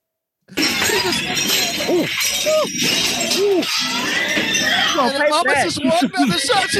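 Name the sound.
glass shattering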